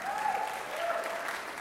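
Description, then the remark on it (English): An audience at a live band performance applauds as the musicians are introduced, a steady, dense wash of clapping at moderate loudness, holding evenly for over a second without any speech on top. “Yeah, don't clap for me.”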